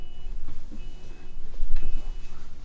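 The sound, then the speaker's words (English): A car alarm sounds from outside, its steady electronic tones coming through faint over a low rumbling background, repeating in a regular pattern with no one speaking. “Oh my God. This car alarm. She's back.”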